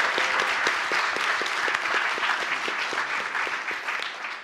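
A room full of people claps steadily, a dense burst of applause that holds strong and then starts to thin out toward the end.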